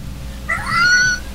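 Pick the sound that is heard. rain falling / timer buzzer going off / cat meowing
cat meowing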